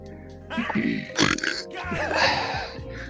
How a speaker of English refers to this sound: Dude, that went perfect with the freaking got him. Yo. Perfectly timed burp.